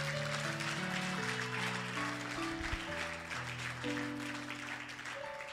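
A crowd claps for Jesus steadily and loudly throughout, a dense wash of hand claps layered over sustained keyboard or organ chords, with no talking.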